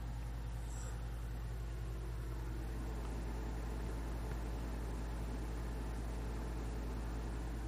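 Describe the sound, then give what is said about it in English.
A big roof-mounted RV air conditioner, running while camping, hums steadily overhead on the roof, a loud, constant low drone with a broad whooshing airflow layered on top, unchanging throughout with no voices. “The air conditioner is right over my head on the roof here. It's a big roof-mounted thing, so you can hear it.”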